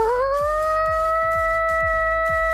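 A siren wail sweeps upward and then holds a steady, piercing tone, while a thumping beat pulses underneath at a regular rhythm. No one speaks.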